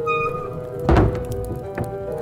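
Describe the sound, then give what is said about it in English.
A door shuts with one heavy, low thud, followed a moment later by a softer knock, all over a steady sustained tonal hum. “Shut the door, Nuzwik.”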